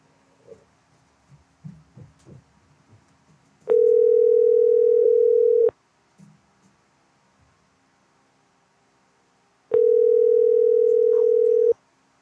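A phone ringback tone: two steady, mid-pitched electronic rings, each about two seconds long, separated by a pause of several seconds. Faint rustling and soft murmuring come before the first ring.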